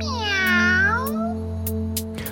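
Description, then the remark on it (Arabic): A cat lets out one long, drawn-out meow, its pitch bending as it fades, over a steady low hum with a few soft clicks afterward; the mischievous cat has a scarf in its mouth. “عادة القطة المشاكسة. كان لديها شيء في فمها.”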